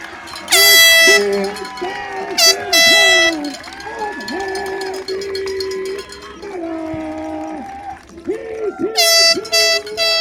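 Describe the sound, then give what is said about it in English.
Loud air horn blasts ring out three times, one long and two shorter, over a steady murmur of crowd noise and voices, echoing around a football field. “And of course, there's somebody behind us with an air horn.”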